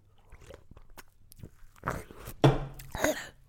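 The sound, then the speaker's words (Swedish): A voice imitates a man drinking water noisily: a series of wet slurps and gulping bursts, scattered at first and growing louder in the final second, with no words spoken. “Ja, men när du satt mitt emot där och han satt här åt och så skulle han dricka vatten. Mm. Och då lät det så här.”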